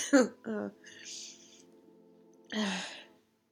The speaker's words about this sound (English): So I had a coughing fit and then my eyes are tearing